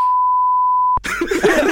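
A censor bleep over a spoken name: a single steady, pure electronic tone holds for about a second, then cuts off abruptly as loud voices and noise come in.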